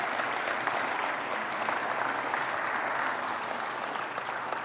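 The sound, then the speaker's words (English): A church audience at an Awana ministry service claps steadily after a prayer, a dense, sustained wash of many hands with no clear individual beats, holding an even loudness throughout before easing slightly at the very end. “Okay, so you can clap.”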